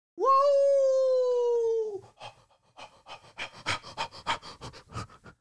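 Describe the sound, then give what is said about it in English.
A person imitates a wolf, making dog noises into the microphone: first a sustained, slightly falling howl-like whine for about two seconds, then a quick run of rhythmic, breathy panting. “I'm wondering if he's going to make dog noises into the microphone again.”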